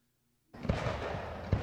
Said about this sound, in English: Some fireworks.